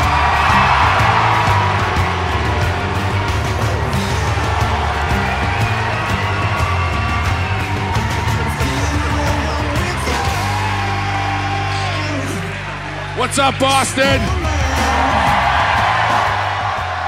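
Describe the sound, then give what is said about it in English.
A loud live crowd at a roast show cheers, yells and whoops steadily for the whole stretch, a dense roar that swells near the end as a voice calls out a greeting over it. “The crowd is hot.”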